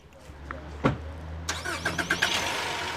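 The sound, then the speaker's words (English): An unmarked police car's engine turns over and catches after a sharp click, rising into a steady, revving rumble with a low hum underneath. “The trio piles into an unmarked police car.”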